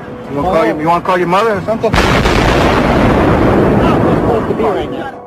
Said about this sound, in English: Do you know if it was an explosion or if it was a building collapse? To me it sounded like an explosion. The explosions were captured on video.